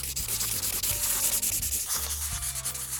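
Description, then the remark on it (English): Markers drawing on a spy map of the area, marking the maintenance shack: continuous scratchy, rubbing strokes squeak and hiss across the paper in quick back-and-forth bursts, fairly loud and steady, with no voices. “I've got markers. Let's draw on the maintenance shack.”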